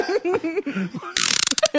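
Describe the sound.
A voice imitates a door closing: a wavering, creaky vocal glide, then a burst of rapid rattling clicks and a few sharp thuds at the end.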